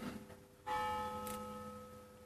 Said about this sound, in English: Oh yeah, there it is. There's the bell. Can you hear it? Can you hear it? It happens all the time. Yep. The bell keeps ringing and ringing.